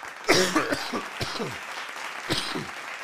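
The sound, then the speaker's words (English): A harsh coughing fit from a person with bronchitis: several rough, raspy coughs in quick succession, then a short pause and a couple more hacking bursts, loud with no talking. “I'm going to be coughing. As a matter of fact, is here's one right now.”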